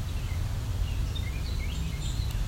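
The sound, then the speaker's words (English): Faint, distant song sparrow calls: a scattering of brief, thin high chirps at irregular intervals over a steady low outdoor rumble. “It might be a young song sparrow.”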